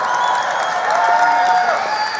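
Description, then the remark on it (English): An audience bursts into steady, loud applause mixed with whooping cheers, a dense wash of clapping that holds throughout without any single voice standing out. “And before everybody claps for you, you may fail, but the reality is you can always get another fucking job.”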